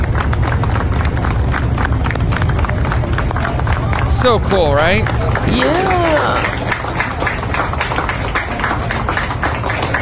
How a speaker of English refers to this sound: The NYPD was lining the streets and clapping for all these doctors that have come into New York from outer space, from out of state. Here's them clapping from outer space.